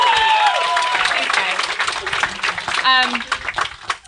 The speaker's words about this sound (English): Can I get some applause for a little baby in a boat?